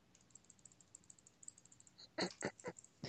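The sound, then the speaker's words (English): Quick, light clicks like keys tapped on a computer keyboard patter steadily at low volume, then a few louder, fuller bursts break in near the end. “Your clicking is not answering my question.”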